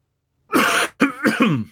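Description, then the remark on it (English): A fairly loud fit of sputtering coughs after a sip of beer went down the wrong pipe: one longer harsh burst, then three quick rasping ones in a row, with no talking. “I was taking a sip oh of my, no I took a sip of my beer and it went down the wrong pipe.”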